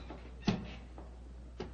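The gallery door opening in a quiet space: a soft, dull thump with a short rumbling tail, then a second lighter knock a moment later. No one speaks.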